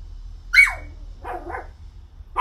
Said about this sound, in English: This dog is barking at nothing. Do dogs see ghosts?